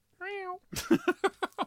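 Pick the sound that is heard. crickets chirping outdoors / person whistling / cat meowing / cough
cat meowing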